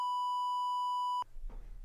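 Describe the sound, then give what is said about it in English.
A loud, steady censor bleep holds one pure pitch for just over a second, then cuts off abruptly into quiet room noise with a faint murmur of voice. “can you beep it out? Bleep it out.”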